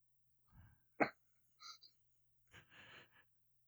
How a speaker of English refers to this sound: sneezes uncontrollably.